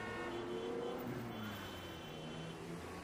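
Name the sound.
traffic noise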